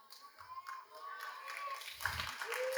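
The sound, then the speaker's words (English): A crowd claps during a sermon, a steady patter of scattered applause that holds at moderate volume, with a faint voice or tone drifting beneath it. “Whether you applaud or not, I will preach.”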